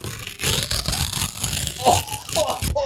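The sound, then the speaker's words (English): Heavy Amazon Basics index card of heavyweight paper stock being torn slowly, a coarse, crackling rip that runs steadily for a few seconds with gritty bursts and fibrous scratching, with brief snatches of voice near the end. “Look at how that tears, too.”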